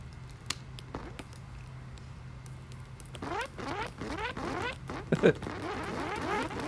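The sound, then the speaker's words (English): Burning bits of a plastic bag, recorded with a phone, drip onto a piece of cardboard, each drop giving a quick, rising whizzing zip. The drops start sparse and faint over a low hum, then after a few seconds turn into a dense, crackling patter. “Yeah, so that's the little plastic pieces dripping down off the bag onto a piece of cardboard.”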